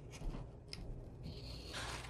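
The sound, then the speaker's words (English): Large scissors snip and slice through fabric, giving a few crisp, scratchy cuts followed by a steadier rasping slide, fairly quiet with no talking. “Cutting.”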